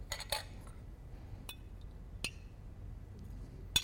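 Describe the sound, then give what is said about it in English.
In a demonstration, a spoon stirs a spoonful of fresh, purified ice water into a glass of raw sewage, giving a quick flurry of bright clinks at first, then a few sharp, ringing taps spaced irregularly over a quiet background. “And we stir in a spoonful of fresh, clean, purified ice water.”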